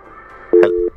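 A telephone busy signal sounds once, a steady, loud electronic tone lasting about a third of a second, heard on its own over a quiet line with a soft click at its start, as a caller tries to get through to a live phone-in.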